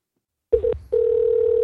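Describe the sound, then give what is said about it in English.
After a half-second of silence, a steady phone dial tone starts as a caller is being added to a group call, stutters briefly with a click and short gap, then resumes as a continuous, clear, moderately loud hum. “Oh, add to group call? Add to group call.”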